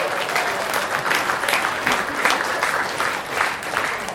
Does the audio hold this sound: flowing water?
no